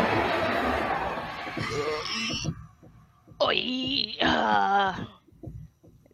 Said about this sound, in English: That death noise is pretty funny.